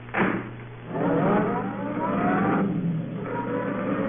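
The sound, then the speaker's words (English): A roadster engine starts with a sharp burst, then revs up loudly with rising whine and pulls away, its steady growl continuing for several seconds. “Come on, get in the car.”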